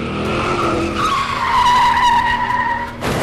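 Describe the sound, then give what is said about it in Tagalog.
A fast car speeds toward a person with a loud, sustained tire screech as it skids, the squeal bending downward in pitch over about three seconds before cutting off abruptly, with no voices present. “Isang mabilis na sasakyan ang humaharurot papunta sa kanya.”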